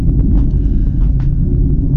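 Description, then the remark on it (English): A deep, continuous roar of F-35 fighter jets passing low, directly over a house, heavy in the bass and steady in loudness across the whole two seconds, with no voices. “F-35s, and they just flew directly over my house. That was a mighty low pass.”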